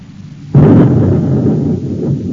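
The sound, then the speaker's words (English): A guided missile explosion erupts suddenly after a brief low hum, bursting into a loud, broad boom that settles into a heavy, rolling rumble lasting to the end. “Number one missile fired, sir.”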